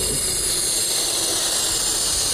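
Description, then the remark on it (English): A balloon being inflated: a steady, loud rush of hissing air that holds constant and bright for a couple of seconds, with no voices. “Inflating a balloon.”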